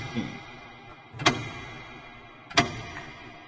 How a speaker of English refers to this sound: It's getting louder. You hear it echoing so fucking loud from downstairs. You are on the third floor. Why is the clock so loud? That's what I say, basically. Why is that damn clock so loud? Do any of the rest of us hear it?